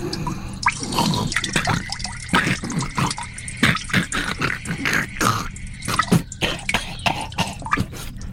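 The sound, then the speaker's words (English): Urine splashing into a toilet bowl as someone crouches above the seat, a steady trickle broken by irregular sharp splashes and drips, fairly loud and continuous for several seconds with no voices. “I'll just crouch above the seat so I don't touch any of the vomit while I tinkle.”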